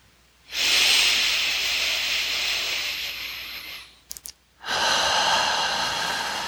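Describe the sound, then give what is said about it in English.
Slow, deep 12-fold lower belly breathing: a long, airy inhale lasting several seconds, a brief pause with a few soft catches, then another long, breathy exhale. No talking, just hissing breath. “And I'm going to begin my 12-fold lower belly breathing.”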